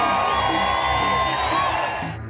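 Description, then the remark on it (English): A large crowd at a political speech by Tuberville cheers and whoops loudly in a dense, sustained roar of voices, with shouts rising above the mass before it begins to fade at the end. “Note the cheers from the crowd there.”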